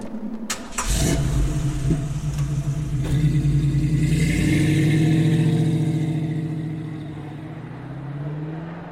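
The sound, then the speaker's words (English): A car engine starts with a burst, then revs and rises in pitch as the vehicle pulls away and drives, the steady roar loud before easing slightly at the end. “You have a car.”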